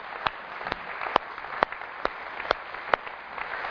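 An audience at King's Church gives a goodbye clap for a member on her last Sunday: a dense, steady wash of many hands clapping, punctuated by sharp, regular accents roughly twice a second, with no voices over it.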